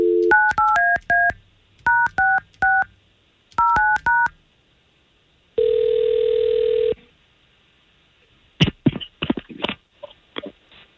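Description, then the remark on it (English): Telephone keypad tones beep out in three quick clusters of button presses as someone dials a woman's phone number to call her, followed by a single sustained electronic tone and then some brief clicking, muffled sounds at the end. “We're just going to get her phone number from you, and we're just going to try to give her a call and see if we can't talk to her first and then introduce you guys to each other, okay?”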